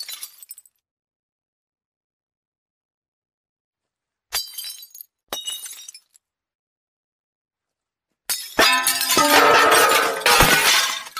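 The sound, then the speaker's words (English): Phone screen glass cracks sharply twice after a stretch of silence, each a brief bright snap, followed by a loud, sustained burst of shattering and tinkling shards, with no voices. “Zoomed in, cracked glass shows on screen in time with the sounds.”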